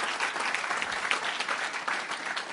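An audience claps steadily, the dense patter of many hands blending into a continuous wash of applause with no voices standing out.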